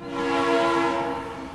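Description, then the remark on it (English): A sustained train horn blares steadily for a moment, a loud, chord-like tone that swells slightly in the middle and holds without a break, with no voices present. “The railroad industry.”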